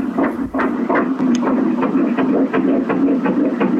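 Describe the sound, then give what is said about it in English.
A tiny, rapid heartbeat of an unborn baby, recorded a few weeks earlier, thumps in a fast, steady rhythm through a constant whooshing, muffled hum, like a monitor recording. It plays alone, with no one talking. “And as a little sort of treat, as a little sort of insight, I've got a little something to play you that I recorded a few weeks ago. This is a little heartbeat.”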